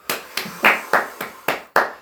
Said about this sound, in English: Yes! Yes, yes, yes, yes, yes, and yes! Round of applause. Thank you! For Martin.